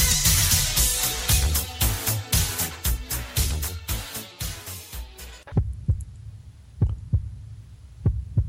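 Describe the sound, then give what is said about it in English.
A dense, loud wash of sound with rhythmic pulses cuts off abruptly, leaving a slow, deep heartbeat sound effect: low, muffled double thumps repeating alone against near silence, opening the Ghost Chronicles International show. “I'm sure that heartbeat's getting worse each week”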